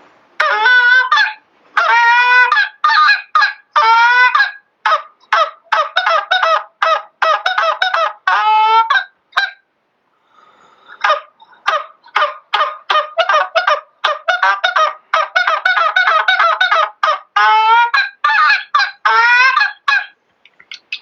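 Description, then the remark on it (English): Rapid, loud goose honks blown on a hand call, sharp clucks and moans strung into fast bursts with a short pause midway, with no talking. “Most of the notes that I can make, obviously, without having some geese coming in, it's kind of just a bunch of noise.”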